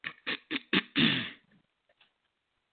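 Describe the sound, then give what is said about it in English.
Someone clears their throat: four short, harsh bursts in quick succession, then a longer rasping rumble, followed by quiet breathing and a faint final sound at the end. “Excuse me, I gotta clear my throat on that one.”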